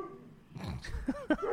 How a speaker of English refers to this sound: dogs, can you know, we're reading a heavy question here. Could you clam up, please, thank you.